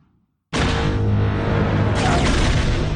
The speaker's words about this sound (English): I do like the sound effect of Jango's bombs